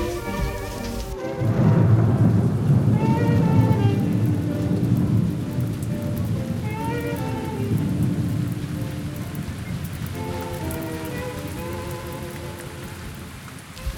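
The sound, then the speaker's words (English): Steady rain pours down for several seconds, a dense hiss with a deep low rumble underneath and faint tonal sounds drifting over it, no voices present. “Standing in the rain.”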